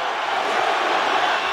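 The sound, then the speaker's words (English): A dense, steady roar of a wrestling arena crowd cheering during a Hogan match, loud and continuous with no breaks, a broad wash of voices blending into constant noise with no clear speech. “Listen to the crowd, man.”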